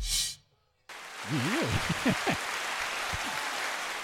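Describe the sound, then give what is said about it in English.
After a brief burst and a moment of silence, steady clapping from a group starts and continues, joined by a few rising and falling whoops and cheers. “It's still recording past 10 minutes, so give it a round of applause.”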